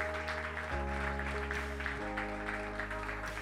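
A crowd applauds steadily for Jesus, a dense continuous wash of clapping hands, while sustained organ or keyboard chords play underneath and shift twice.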